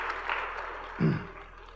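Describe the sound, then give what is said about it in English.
An audience applauds children who have just given gifts to their mothers. A steady wash of many hands claps throughout, with a brief low vocal sound cutting in partway through. “Let's give those kids a round of applause.”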